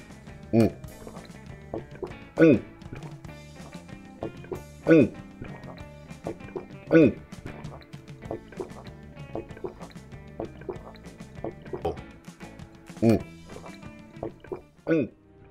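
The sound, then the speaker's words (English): Someone gulps a drink down in a long series of loud swallows, one every second or two, with wet liquid sounds between them. “Okay, less talk, more drinking. All right, cheers and bottoms up. Here I go.”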